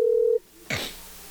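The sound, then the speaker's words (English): A brief steady electronic phone tone from an outgoing call to the speaker's brother, cut off abruptly, followed a moment later by a sharp click and faint line hiss, with no talking. “I will call him.”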